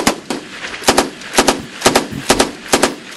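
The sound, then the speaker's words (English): Live-fire gunfire from U.S. soldiers and their Indonesian counterparts during Exercise Garuda Shield 2014 in Indonesia: loud, sharp rifle cracks arriving in quick pairs and short bursts at a fairly steady rhythm, with brief gaps of echo between them and no voices. “U.S. soldiers are participating in live fire exercises with their Indonesian counterparts.”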